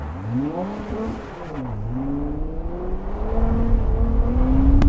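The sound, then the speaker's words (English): A car engine accelerates hard while driving on ice, its droning pitch dipping briefly before climbing steadily and growing louder over the next few seconds, with a rough rumble of tire noise underneath and no talking. “SO MUCH FUN=driving cars on the ice on purpose”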